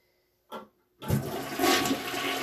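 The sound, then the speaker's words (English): A toilet flushes: a brief click of the handle, then a loud rushing gush of water that swells and keeps roaring steadily. No one speaks. “I love hearing a toilet flush.”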